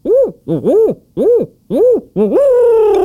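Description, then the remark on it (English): A person imitates an owl, voicing about five short, rising-and-falling hoots in quick succession, then a longer drawn-out hoot that slides downward. Fairly loud, with no other sounds. “I'm going to go with the owl hoot, and it's a classic.”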